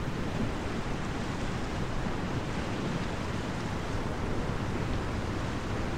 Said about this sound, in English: Feels like the only place we can catch a breeze during this blackout. It's like our own private beach, 6 stories up.